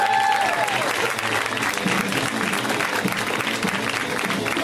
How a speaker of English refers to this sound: This man is one of my favorite comedians. I absolutely hate following him. And he's also going to be in a new movie with David Cross called Hits. A round of applause for James Adomian, everybody.